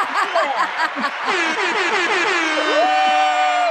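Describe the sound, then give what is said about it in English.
A loud DJ air horn blares in quick repeated blasts, then stretches into a long sustained honk with a rising pitch at the end, filling the whole few seconds with no talking. “We need like an applause or DJ air horn or something.”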